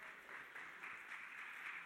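A crowd applauds with steady, dense clapping that holds an even, moderate level throughout, with no voices over it.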